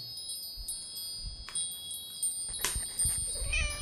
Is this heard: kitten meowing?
yes